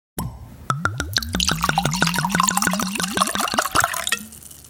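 Wine glugs out of a bottle into a glass, a steady run of quick rhythmic gurgles lasting a few seconds before stopping abruptly. No one speaks.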